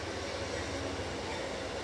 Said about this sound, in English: Hang on, train's coming.